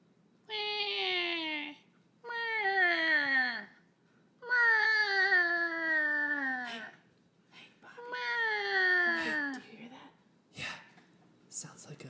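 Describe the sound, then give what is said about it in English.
A baby crying in four long, loud wails, each starting high and sliding downward in pitch, with short gaps between them and a faint breathy sound at the end. “Kid crying? Or kids? That sounds like a baby.”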